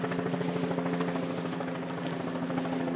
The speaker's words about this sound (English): That's interesting. I don't think we've had a helicopter overhead for a while.